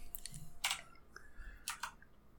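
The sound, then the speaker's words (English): Dice clatter in two quick bursts of sharp, rattling clicks, with a few lighter taps in between. The sound is quiet, and nobody speaks. “And now we get to roll the other fun dice.”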